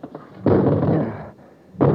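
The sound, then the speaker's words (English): A metal chair slams hard against a small window made of electroplast in a loud, rumbling crash that rings for nearly a second, then a second heavy blow lands; no glass shatters. “It isn't very big, but I think if we smashed it, we could get through.”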